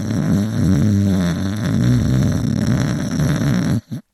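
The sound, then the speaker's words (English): A single long, drawn-out snore, loud, rumbling steadily with a wavering low pitch for nearly four seconds before breaking off abruptly. “That's a long snore”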